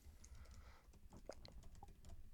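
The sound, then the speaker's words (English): Rapid clicking of keys on a computer keyboard, an irregular patter of taps continuing throughout, quiet, with no voices. “The sound of typing.”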